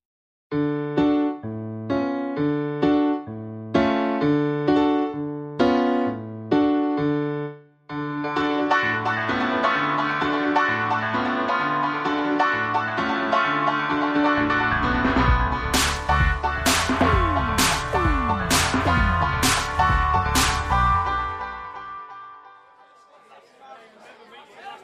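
Pub ambience: a steady murmur of crowd chatter mixed with tuneful, chord-like tones, then a quick run of sharp clinks toward the end before the noise fades away.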